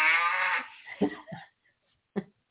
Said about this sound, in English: That's a pretty good one. That sounds like a mad bull, though. You don't hear that at the end. It is grumpy. Must not have had his latte.